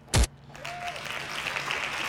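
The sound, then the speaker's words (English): Hand claps: one sharp, loud clap opens, followed by a softer, steady wash of light applause-like noise that carries on to the end, with no talking. “Hand claps for him, man.”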